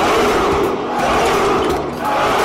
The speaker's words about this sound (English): Let's give them all a big cheer.